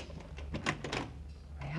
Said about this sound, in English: Of course, darling, right here, apartment 22B. What are you doing with those keys? Opening the door to the apartment, silly.